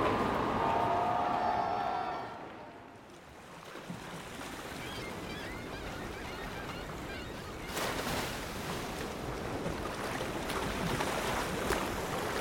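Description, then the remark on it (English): A speedboat in the sea, approaching from 200 metres to 100 metres with its propellers thrashing the water, drones over rushing water. Its whine is clear at first, then gives way to steady, loud churning spray and wash that swells again toward the end. “And then you see it, a speedboat hurtling towards you.”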